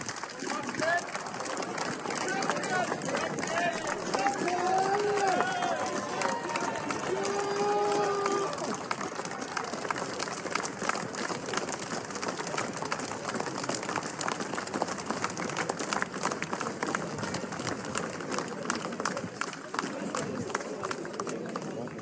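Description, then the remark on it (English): A large crowd of hundreds lining the streets of Edinburgh claps steadily and densely for over twenty seconds as a hearse drives by in a memorial funeral procession, with scattered cheers, shouts and whistles rising above the applause early on, loud throughout. “The love from the funeral attendants was made apparent by the applause and cheers as the hearse drove by.”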